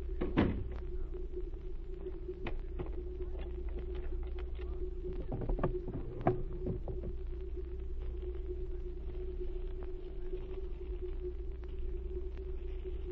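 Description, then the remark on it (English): A door on a ship shuts with a solid thud near the start, followed by a few scattered clunks and rattles, all over a constant low engine-like hum and rumble. No one speaks. “Close the door and wait.”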